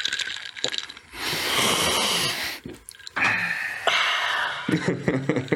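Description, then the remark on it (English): A drink is shaken in two loud bursts of sloshing, rattling liquid, the first lasting over a second, then a shorter second shake, with brief breathy sounds between and after. “Shake your drink.”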